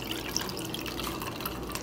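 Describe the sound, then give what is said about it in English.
Purple liquid pours steadily through a small tea strainer into a wide-mouth mason jar while a flower is held back, a soft continuous trickling with small dripping splashes, fairly quiet, with no one speaking. “So I have a little tea strainer here that I'm putting in this wide mouth mason jar. Basically just hold the flower and pour that beautiful purple liquid right in.”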